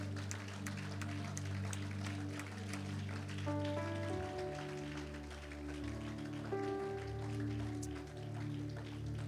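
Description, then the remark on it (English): An audience claps their hands to thank God in a dense, continuous patter for about nine seconds while sustained keyboard chords hold underneath and shift twice. “Can we just clap our hands and thank God for what He is doing, what He's done?”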